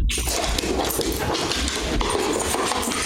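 A dense, continuous commotion of dogs barking excitedly at a visitor, loud, with clattering sounds mixed in and no pauses for the full few seconds.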